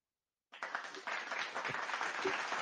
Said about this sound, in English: Round of applause for the Cleveland Cavaliers.